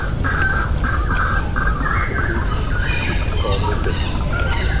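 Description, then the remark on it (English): Dense, loud forest ambience in Clementi Forest on a January morning: a steady high insect-like hum runs throughout, while birds give repeated harsh, crow-like calls and squawks in short bursts over a constant rumbling wash. “So, I mean, we're here in the middle of Clementi Forest, and as you can hear, it's quite noisy. Not because of traffic, for once.”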